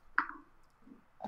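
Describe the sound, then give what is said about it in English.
A small die rolled for initiative clatters once on a hard surface with a sharp click, followed by a brief rattle, then another short tap near the end. Quiet, with no voices. “Can you two please roll initiative?”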